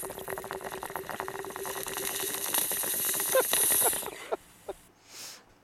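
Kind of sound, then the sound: nature, running water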